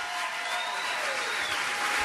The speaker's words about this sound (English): this is all in honor of the matriarch of the Keenan's family, Peg. We have her picture right up here. Round of applause for Peg.